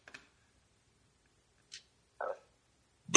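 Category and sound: human body sound, burp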